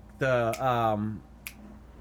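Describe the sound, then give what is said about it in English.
Two sharp, crisp finger snaps about a second apart, made by flicking the cap of a just-opened beer toward a trash can. A sustained, wavering hummed voice runs underneath the first snap, then fades before the second. “At this point, he does that, like, finger snap with the beer...”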